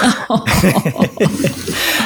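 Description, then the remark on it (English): A single sharp, noisy sneeze bursts out early, followed by a short stretch of voiced murmuring and breathy sounds that trail off. “Bless you.”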